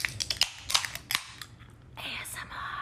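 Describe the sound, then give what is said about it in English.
Several sharp metallic clicks and snaps as Topo Chico seltzer cans (strawberry guava, exotic pineapple and tangy lemon lime) are cracked open, followed by a steady carbonated fizz and hiss. A faint voice is briefly audible. “Let's open it on the count of three.”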